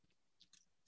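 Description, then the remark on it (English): A can of Oscar Blues Old Chub beer being popped open: a few short, sharp clicks and brief bright hisses of escaping gas, faint and quiet, with no talking. “I just popped open a can of Whoop-ass.”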